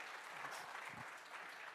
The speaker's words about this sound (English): So if you want to give him a round of applause as he comes this morning.